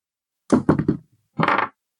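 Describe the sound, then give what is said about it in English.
Dice are rolled for a strength saving throw in a tabletop role-playing game: three quick knocking clatters, then a pause and a short rattling tumble. The sound is moderately loud and there is no talking. “Come on, lucky dice.”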